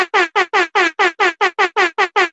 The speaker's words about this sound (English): Bro, hold up. I just got to give us some fucking air horn.